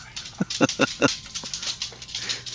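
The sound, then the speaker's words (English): Pet dogs bark excitedly in a quick burst of four or five sharp yaps, followed by quieter restless noise and a low background hum. “My dogs are going crazy.”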